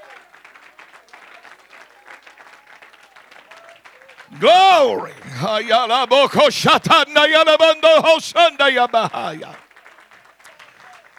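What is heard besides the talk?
audience clapping hands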